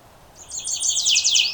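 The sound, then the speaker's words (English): A warbler sings a bright, rapid run of high sweet notes that speeds into a buzzy trill, fairly loud, from right above the recordist a few feet away, over a quiet background with no talking. “Got a lot of the sweet, sweet, sweeter than sweet song.”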